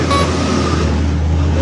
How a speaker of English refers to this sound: This is Sleepy Glebe. Let's just see how much stuff we can get in here. We've got 2 431 buses, a fire engine, 3 trucks, 2 taxis, and a kid on a bike looking really confused.